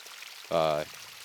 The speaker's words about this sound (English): Yeah, there's a little stream here, a little waterfall. There's it's a, cute. A babbling brook, yeah. I'm going to point my microphone towards it.